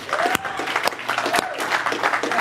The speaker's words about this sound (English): And that's normally the story we hear around the time of, now I think we can clap a little better than that for the story.